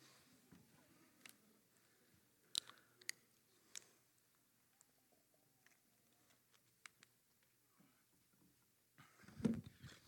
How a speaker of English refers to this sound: I'll give you a second while I take a sip of water.